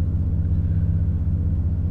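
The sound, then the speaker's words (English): A steady, deep rumble of rush-hour road traffic in Greenwood on a hot day fills the two seconds, constant and fairly loud with no distinct passing vehicles, like engines idling and crawling in heavy congestion. “And it's traffic hour. Rush hour.”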